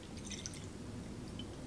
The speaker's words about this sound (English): Alright, so I'm gonna get a bowl. And you gotta taste it in milk, right? So, to test these cereals out, let's see if they're as good as the original. I'm gonna pour myself some milk here.